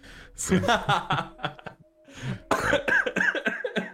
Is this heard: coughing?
yes